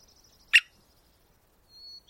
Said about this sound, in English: recorded the drums and squeaks of this American three-toed woodpecker